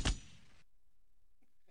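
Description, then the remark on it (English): A single gunshot sound effect: one sharp, loud crack at the very start, trailing off in a brief noisy tail before falling silent. “You know what's going to happen after that? Gunshots.”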